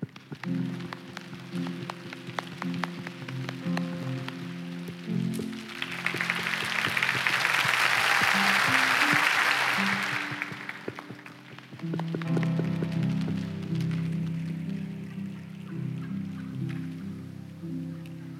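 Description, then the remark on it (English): A large crowd pats and rubs their hands together to mimic rainfall, the dense pattering hiss swelling loudly in the middle and then fading, over a steady low musical drone. “Y'all, we just made it rain right here, victory.”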